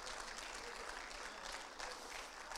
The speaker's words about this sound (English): Somebody give the Lord a hand clap of praise and a shout of triumph.